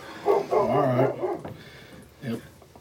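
Dogs bark and yelp in a short burst, one drawn-out whining bark in the middle, then a lone bark after a brief pause. The sound is moderately loud.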